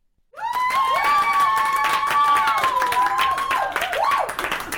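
A live audience at the Holiday Inn Express in Leeds Armouries, Leeds, bursts into a round of applause, dense overlapping clapping with some cheering and whoops rising above it, sustained and loud throughout.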